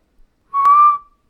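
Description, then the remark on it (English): A person whistles one short, clear note, holding it steady for about half a second with a slight upward lift, imitating a fictional bird's call from a movie. No talking. “We could spend a while with you whistling into the...”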